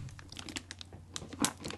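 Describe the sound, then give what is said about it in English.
Steady crinkling of red, very shiny wrapping paper on a heavy gift, a run of quick crackly rustles with one sharper crunch near the end, no voices. “It's a red, shiny paper. The paper is very shiny.”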